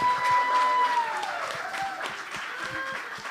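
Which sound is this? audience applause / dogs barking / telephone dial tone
audience applause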